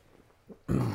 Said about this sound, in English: And then I did it. Our stupid like healthy diets now making us burp on camera.